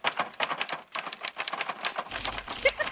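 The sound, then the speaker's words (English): Rapid, busy typewriter typing with dense clacking keystrokes in an irregular rhythm, steady throughout, joined near the end by a low rumble and a few higher metallic dings. “I'm hearing typing.”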